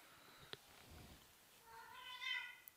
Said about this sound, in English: I've never heard a cat that loud.